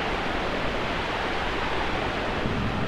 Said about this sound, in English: Dark wind. Ooh, white noise wind. That's sick. Could totally synthesize a storm.